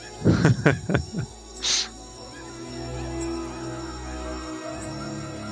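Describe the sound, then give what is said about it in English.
Several sharp animal calls burst out at the start, followed by a brief hiss, then a steady bed of insect chirps and jungle ambience with faint scattered calls. “Come on, you love those jungle noises, don't you?”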